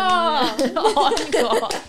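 A baby claps in quick, uneven little pats, some soft and some sharper, over a sustained vocal tone at first and then chatter and light laughter.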